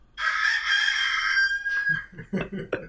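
A rooster lets out one long, loud, strained crow that holds for over a second before trailing off, followed by a few short, choppy clucking sounds.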